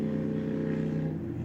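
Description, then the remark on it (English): A loud car engine drones steadily with a strong low harmonic hum, then its pitch and intensity shift slightly near the end as it passes by. No one speaks. “Make a louder engine, why don't you?”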